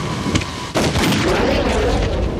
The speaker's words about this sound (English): And he just starts walking towards Rhodes, and they both raise their guns, and they both shoot each other multiple times.